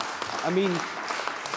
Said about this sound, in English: Muted applause from behind him, and if he could see the glum faces on the SNP members, it's incredible.